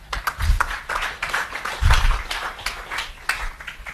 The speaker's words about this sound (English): So I'd like a round of applause as we welcome Mr. Daniel Silke.